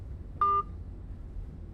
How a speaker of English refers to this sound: She hung up the phone, and I leaned my head back against the window of the train.